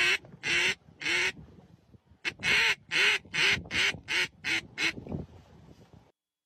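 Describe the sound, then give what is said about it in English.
A duck call blown by a Labrador dog in a rapid series of loud, nasal quacks, about eleven blasts in two bursts with a short pause between, clear with no talking. “He knows how to use his own duck call. For you audio listeners, this is a lab blowing it himself.”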